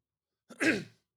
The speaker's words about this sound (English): But I'm just going to take a break to cough.